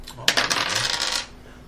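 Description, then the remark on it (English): Dice rolled for a defense roll in a game clatter and tumble across a hard surface in a quick burst of bright, rattling clicks lasting about a second before settling into silence. No one speaks. “So now you're going to roll your defense.”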